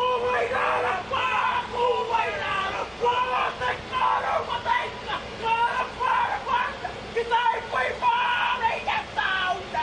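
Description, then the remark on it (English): A young boy from Wairarapa Moana chants and shouts forcefully in a rhythmic haka, loud, with sharp bursts of yelling over a steady background hum of outdoor noise, as a waka (canoe) hangs on chains above a haulage truck trailer. “So the canoe is still suspended above the trailer, and as this was happening, young boy from Wairarapa Moana is performing the haka.”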